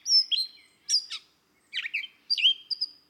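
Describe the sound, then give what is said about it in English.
A grey catbird sings a varied, jumbled phrase of squeaky whistles, slurred notes and harsh chatters, delivered in quick separate bursts with short pauses, clear with no other sounds. “Grey Catbird”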